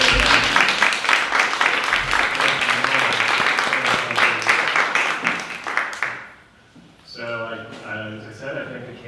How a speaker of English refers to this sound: Thank you very much, candidates, and give you a round of applause.